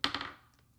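A small die clatters across a tabletop: a few quick, sharp hard clicks in rapid succession that fade out within a second. It's fairly quiet, with no voices.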